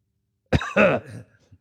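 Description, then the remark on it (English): Two quick, rough coughs in close succession, the second longer and throatier, with no talking around them. “Like they have a cough.”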